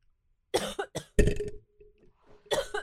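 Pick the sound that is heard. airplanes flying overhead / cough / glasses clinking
cough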